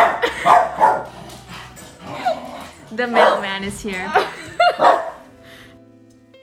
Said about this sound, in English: My dog is about to bark.